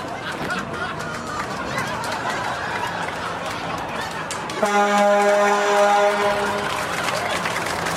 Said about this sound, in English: There we go. Yeah, honk, honk. Honk, honk goes the truck. Honk, honk goes the truck. Honk, honk goes the truck. Did you guys see? The truck goes honk, honk.